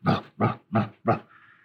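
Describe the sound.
A person imitates a dog's growl in four quick, evenly spaced gruff bursts, loud, in running rhythm, the way a dog growls as it runs during a chase around the house, ending with a softer trailing rasp.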